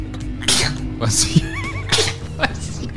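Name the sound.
sneeze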